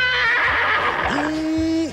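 A horse neighs loudly, a shrill, wavering whinny that runs for about two seconds and ends in a sustained, rising-and-falling cry.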